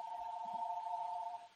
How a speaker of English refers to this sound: Oh, now it's time to get off because you got a phone call.